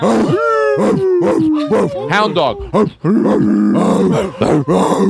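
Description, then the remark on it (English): A person imitates a hound dog howling, with loud, drawn-out vocal howls whose pitch slides and wavers, repeated several times in quick succession. “Hound dog.”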